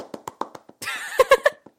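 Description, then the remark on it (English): A handful of sharp, crisp hand claps in a quick, slightly uneven rhythm, then a busier stretch where louder claps mix with a bright, tonal sound. “Just because you're clapping doesn't mean the audience is clapping.”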